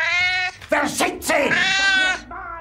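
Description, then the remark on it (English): A cat watching the film Downfall meows loudly and insistently when Hitler throws the pen, giving a long, drawn-out wail, a brief scuffling break, then another stretched yowl and a short final mew. “When he throws the pen, he just meows his little head off.”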